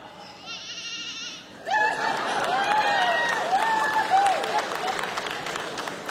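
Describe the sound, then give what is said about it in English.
An audience, prompted by the word 'sheep', loudly imitates sheep in a chorus of overlapping, wavering 'baa' bleats that swells suddenly and carries on for several seconds, with a noisy audience murmur underneath. “That's the best sheep I've ever heard.”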